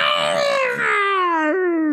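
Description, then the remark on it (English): A person's voice imitates the mighty roar of a trapped creature: one loud, sustained, wailing cry that slides steadily downward in pitch for about two seconds, with a brief catch near the end. “She lets out a mighty roar. What does that sound like?”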